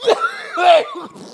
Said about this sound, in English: I have to cough again. Wait. No dead air.